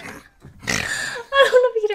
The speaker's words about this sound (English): I would like to think that I'm getting distracted because my dog is like snoring.